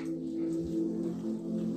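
A dog whimpers in a steady, drawn-out whine, clear, with no talking over it.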